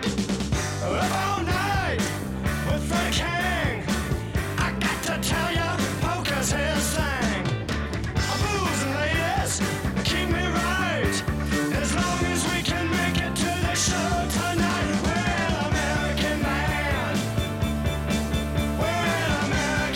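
A 1970s hard rock song plays loudly and steadily, with driving drums, full band instruments and a sung vocal line weaving over the top throughout.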